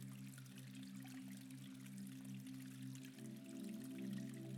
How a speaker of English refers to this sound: a cute and quaint wooden footbridge, you notice a series of small waterfalls that feed the lower hot spring. You stop for a moment, you close your eyes, breathe in the fresh, pure air as you listen to the gentle trickles of the water.